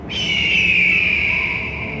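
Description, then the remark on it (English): A hawk lets out a single long, piercing cry that starts abruptly and slowly slides downward in pitch, loud, echoing off mountaintops, with no talking. “The hawk's cry echoed off the mountaintops.”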